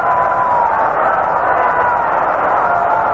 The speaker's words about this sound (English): Lou Gehrig gets a pass, filling the bases, and it brings up Jimmy Fox. Getting a big hand from the crowd.